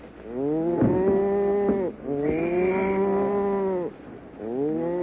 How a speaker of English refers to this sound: Come on, cattle, line up.